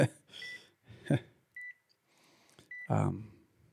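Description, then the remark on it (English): Hospital machines give off three short, high electronic beeps, spaced about a second apart, mixed with bursts of rustling, clattering noise and brief voice-like sounds. “All these machines beeping, you know, it can be stressful.”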